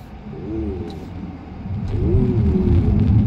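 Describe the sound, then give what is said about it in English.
A car engine revs and accelerates hard, a deep rumble with rising harmonic tones that swell louder toward the end. “How quick this accelerates, isn't it?”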